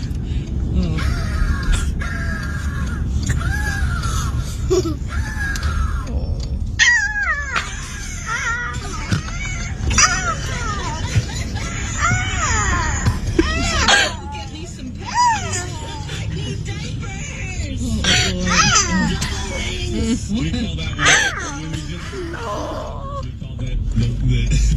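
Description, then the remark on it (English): A two-year-old girl's voice repeatedly lets out shrill, rising and falling screeches imitating an eagle, in quick bursts over a steady outdoor rumble of traffic and background noise. “And then her two-year-old decides to start mimicking the period eagle.”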